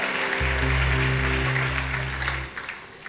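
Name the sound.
audience clapping hands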